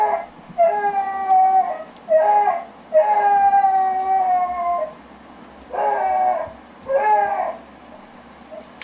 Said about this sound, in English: It's not like they saw another dog. Like, they're howling. I'm like, they're upset. Like, this can't just be them barking. Like, there's a problem with these dogs.